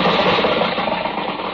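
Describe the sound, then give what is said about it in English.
A car carrying a load of pigs approaches out in the countryside, its engine running with a steady, broad rumbling roar that holds fairly even throughout, easing only slightly toward the end, with no voices. “Oh, here comes the car.”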